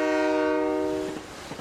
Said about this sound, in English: I love the noise of the train.